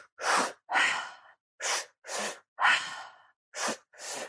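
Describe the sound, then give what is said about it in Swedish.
A person breathes rapidly and forcefully through the mouth, about seven loud, airy in-and-out breaths in quick succession, with no talking; a breathing technique that comes from Stan Groff, breathing very fast to oxygenate the body very intensely. “Och de grundade en andningsteknik där man andas väldigt snabbt, där man syresätter kroppen väldigt intensivt.”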